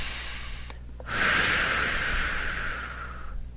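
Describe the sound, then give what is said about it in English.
A long, forceful exhale rushes out, breathy and airy, lasting a couple of seconds after a brief inhale, with no talking. “Big exhale, releasing any rigidity or a sort of inflexibility that may feel like an obstacle for us feeling this and knowing this and further identifying with this sense of our sovereignty.”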